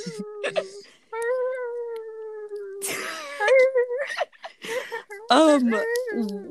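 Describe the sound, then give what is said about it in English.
Pet dogs whine and whimper, reacting to a wolf sound they hear: a short cry, then a long, steady, high-pitched whine, followed by a run of choppy, wavering whimpers and yelps that rise and fall in pitch. “Guys, my, dog, my dogs are going crazy.”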